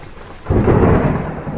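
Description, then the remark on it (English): A deep, loud rumble of thunder from an approaching storm bursts in after a brief quiet moment and rolls on heavily, with a steady hiss of rain beneath it and no voices. “This coming storm is getting to me for some reason. I don't want to be caught out in it.”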